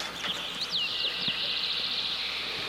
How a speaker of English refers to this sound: And so I put in some birds, because birds reverb really well.